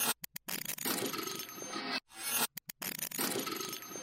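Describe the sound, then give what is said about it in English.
A 'Crunchy Clap' sample from a sample pack by Anemone, played in reverse, heard twice: a few stuttering bursts, then a gritty, hissing swell that builds and cuts off abruptly. No voices. “It's called Crunchy Clap. And I just reversed it.”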